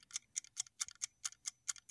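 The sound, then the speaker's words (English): A game timer counting a 60-second round ticks steadily and quickly, about four to five crisp clicks per second, clear with no voices or other sounds around it. “Time back on the clock.”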